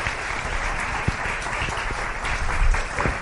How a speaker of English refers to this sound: All right. Thank you, guys. Go ahead and grab a seat. Clap for them one more time.